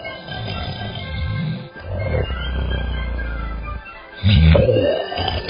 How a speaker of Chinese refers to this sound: 睡着大觉呢，鼾声大得像一群大象的叫声。